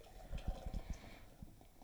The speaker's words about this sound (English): I'm pouring myself up first.